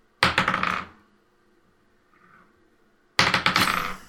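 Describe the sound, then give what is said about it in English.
Red dice clatter and tumble across a tabletop in two fairly loud bursts of rapid clicking, separated by a couple of seconds of near-silence with only a faint murmur in between. “Yeah, as he rolls.”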